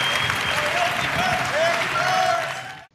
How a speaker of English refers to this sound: Awesome. Big round of applause